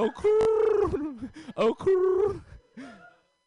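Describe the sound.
A person imitates a pigeon, voicing a few warbling, throaty coos in a loud burst, with brief pauses between them before fading out.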